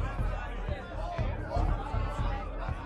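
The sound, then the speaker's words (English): A dense, restless, unfriendly crowd outdoors in the morning murmurs and chatters with no single voice standing out, a steady babble of many people with occasional louder swells and low thumps underneath. “Boy, it sure is crowded out here this morning. What is all this ruckus about?”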